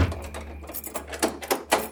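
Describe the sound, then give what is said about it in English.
A house door being triple locked: several sharp metallic clicks and clunks, the last three close together in a quick rhythm, over a low steady hum with no voices. “And we all ran towards the house, triple locked the door.”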